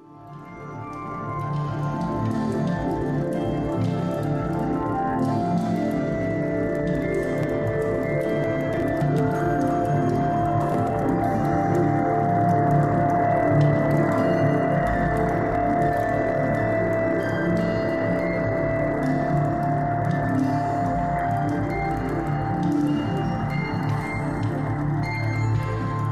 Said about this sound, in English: Listeners can hear the intricate soundscape of the cosmic cliffs in the Carina Nebula and explore the contrasting tones of two images that depict the Southern Ring Nebula.